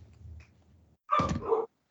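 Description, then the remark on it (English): After a second of low, quiet rumble, Peach the dog lets out one loud, drawn-out bark that breaks into a whining, whimpering yelp before cutting off. “The dog's killing somebody.”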